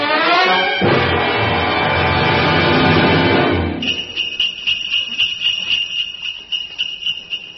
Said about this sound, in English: Oh, Alan, hear the sleigh bells.